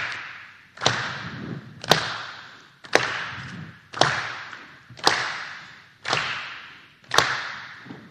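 Steady hand claps land together with foot stomps about once a second, each hit a sharp crack over a low thud that rings briefly before the next beat. No one speaks.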